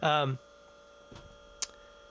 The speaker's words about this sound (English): We're going to keep the fridge sound in here. It's real.